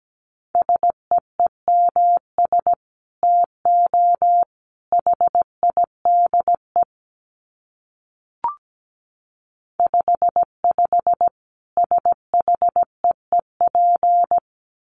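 Morse code at about 17 words per minute: a steady mid-high beep keyed in quick dots and longer dashes, grouped into bursts with pauses and a single short click midway. No one speaks.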